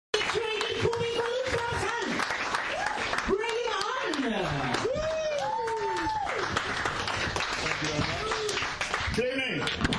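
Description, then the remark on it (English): A comedy gig audience bursts into sustained applause for the MC, dense clapping running the full length while voices whoop and cheer over it with rising and falling shouts. “Big round of applause for your MC”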